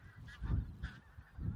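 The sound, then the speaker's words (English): Wild geese flying overhead honk in a loose chorus of repeated calls, several birds overlapping in uneven bursts, their wings audible, soft against an open outdoor background on a winter's day at the Ribble Estuary, Lancashire, with no talking. “Meet owls and wild geese in the wilds of Lancashire's Ribble Estuary”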